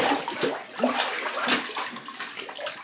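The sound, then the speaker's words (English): Bathwater sloshes and splashes as a person lying in a bathtub gets up onto their knees, with irregular surges of moving water and dripping over about three seconds, no voices. “I am going to get up on my knees, and to prove to you that I am actually in the bath, I am going to dunk my head in the water and scream.”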